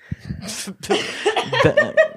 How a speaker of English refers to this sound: coughed again. It's the Rona. It's very sus.